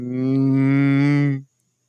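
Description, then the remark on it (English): A person imitates a cow with one long, low moo, loud, holding steady for about a second and a half before cutting off into silence. “I was like, is that a cow?”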